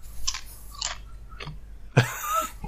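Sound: chewing crunchy corn chips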